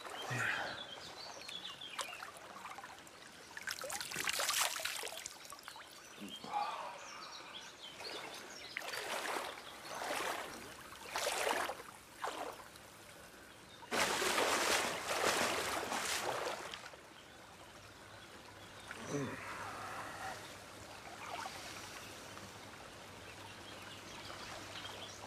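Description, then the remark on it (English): Freezing spring water coming straight down from the mountains splashes and trickles in uneven bursts, with louder rushing surges between quieter gurgling stretches, fairly loud, with faint outdoor ambience and no talking. “Spring is in the mountains. The Alpi at Obie. The water comes straight down from there.”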